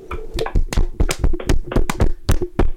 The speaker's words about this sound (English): That's going to sound terrible on the mic. But a round of applause for Paul Heyman.